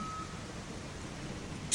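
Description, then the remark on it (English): A tow truck idles with a low rumble as a short high reversing beep sounds at the start, then a sudden loud hiss of air brakes bursts out at the end, as it winches a teal 30-year-old Alfa Romeo Spider convertible onto its flatbed in pouring rain. “The skies opened up as I watched the tow truck winch my teal Alfa Romeo onto the flatbed.”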